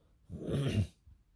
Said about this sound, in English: I'm just going to sit here with my dog, who is sniffing and snorting and paying no attention to me, and stare at my wall and spew out my thoughts like a crazy person.